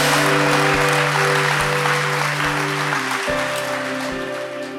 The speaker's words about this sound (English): Why don't we give the Lord a clap and a shout?